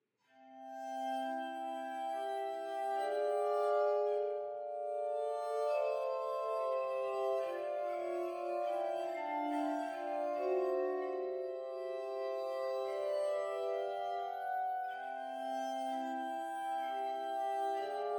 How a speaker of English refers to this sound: One of the most famous pieces featuring this instrument was by Mozart in his Adagio for Glass Harmonica, written in 1791, for a blind virtuoso, Marianne Kirchgesner.